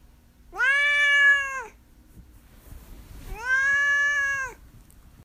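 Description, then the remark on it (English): A cat named Duarte meows twice, each call long and drawn out, with a short pause between them; the meows are clear, with no talking during the sounds. “And now we'll move on to Duarte's Corner, where my cat Duarte will give his opinions about the book.”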